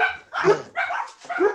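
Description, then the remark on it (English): Several quick, high-pitched dog barks in a steady rhythm, fairly loud, with short pauses between the yaps and no talking over them. “The dogs are doing it.”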